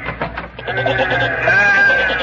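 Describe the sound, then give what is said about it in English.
Several sheep bleat together outside the door in a continuous, wavering, loud chorus, with overlapping cries blending into a sustained baaing that swells slightly toward the end; Horace has come back with his sheep friends. “Horace has come back again, and he's brought all his little sheep friends with him.”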